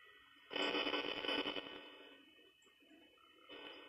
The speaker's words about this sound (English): That was a vent sound. Gonna come out of that? Yeah, it was a vent sound. He just went again.